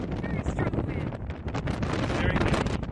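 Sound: wind blowing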